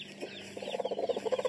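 A broody hen clucks quietly, a rapid run of soft, low clucks that quickens into a steady pulsing stutter, with no voices.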